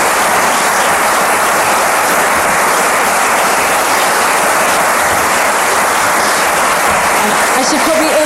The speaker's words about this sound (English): A round of applause if you will.